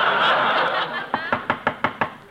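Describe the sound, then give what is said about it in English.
A steady series of six sharp knocks on a door, evenly spaced, following a brief wash of audience laughter that fades out. “Well, what are you knocking again for?”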